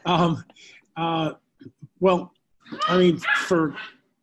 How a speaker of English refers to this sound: Those dogs.